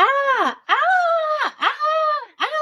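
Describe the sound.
A voice lets out four loud, frightened screams in quick succession, each a wavering, drawn-out cry with short gaps between, without any other sound.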